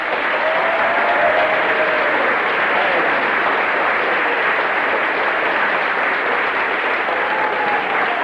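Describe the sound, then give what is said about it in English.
An audience claps for Jesus together in steady, sustained applause, a dense wash of many hands at an even level for the whole stretch, with faint whoops or voices rising briefly through it. “Well, let's just give Jesus a clap.”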